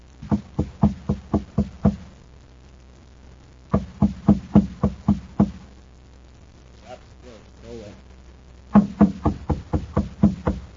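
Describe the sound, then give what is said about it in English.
Three rapid bursts of firm knocking on a door, each a quick run of about seven raps, loud, with a brief muffled voice heard in the pause before the last round; a thin, stoop-shouldered man knocks at the door at the top of a stairway beside a shabby machine shop on a side street in Kepler City on Mars. “He knocks at the door.”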